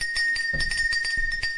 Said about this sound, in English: So I'm going to grab the rain stick while you hit some karma here.